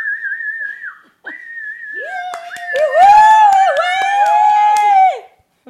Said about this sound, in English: The audience cheered and whistled.